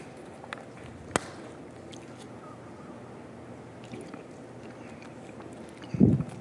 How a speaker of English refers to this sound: Sorry, I'm just going to take a sip of water really quick.